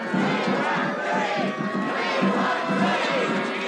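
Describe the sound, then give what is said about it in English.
A large, agitated crowd of mourners at Rudolph Valentino's funeral along Broadway roars and shouts all at once as it grows unruly, in the rain, a dense, steady wall of voices with scattered cries rising out of the din, loud throughout. “The crowd grows unruly, a scene recreated in the 1977 film Valentino.”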